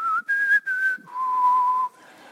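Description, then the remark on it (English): A clear human whistle plays a short four-note call sign from The Hunger Games: a brief note, two slightly higher notes, then a long, lower held tone. No one speaks. “And then I hear this whistle call sign.”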